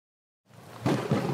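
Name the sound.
thunderstorm with rumbling thunder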